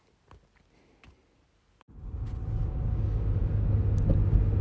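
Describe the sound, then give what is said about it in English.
A few faint clicks in near-silence, then a steady low rumble swells in at about two seconds and holds, the muffled hum inside a running car. No one speaks. “Feels like it's been a while since I've recorded a podcast here in the car, and it's been a little while since I've gone to the trail to do some running.”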